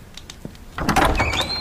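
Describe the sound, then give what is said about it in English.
A heavy door to a shrine grinds and scrapes as it slides open, with a rising metallic squeal near the end. The rumble starts abruptly after a moment of near quiet. “Brother Philigenus, the door, please.”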